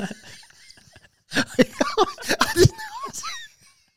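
After a second of quiet low murmuring, a man breaks into a loud burst of rapid, rough coughing and choking on sweeteners, several harsh hacks running together before trailing off with a few strained gasps.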